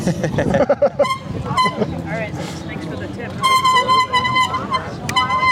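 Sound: bicycle bell ringing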